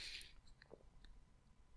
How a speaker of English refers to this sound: Oh, it's crunching hour. Jesus, man. The size of their fucking teeth.